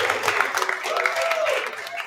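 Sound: crowd applauding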